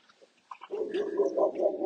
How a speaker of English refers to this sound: Another dog upset about the presence of Wolfie Harris.